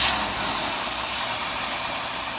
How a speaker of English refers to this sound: It's 1961, a few days before Christmas. A man in horn-rimmed glasses and slicked, side-parted silver hair turns the ignition of a new Chevy Impala Supersport.